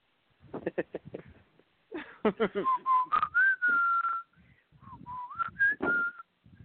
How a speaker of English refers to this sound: Were you trying to whistle the MASH theme song there? Is that what that was? Yeah, it was.